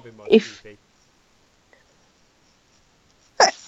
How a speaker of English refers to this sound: Sorry, I couldn't. Yeah, I could not stop those. I couldn't stop those sneezes. I'm really sorry.